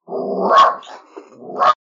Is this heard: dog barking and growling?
yes